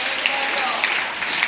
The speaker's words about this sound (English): Come on, jump to your feet and clap your hands and shout, there's a plan by God.